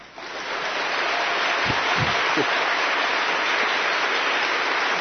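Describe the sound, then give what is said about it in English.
An audience at Myers Park Baptist Church bursts into steady, dense applause for its new senior minister, quickly rising to full volume and holding evenly for several seconds, a continuous wash of many hands clapping with no pauses. “Don't clap yet.”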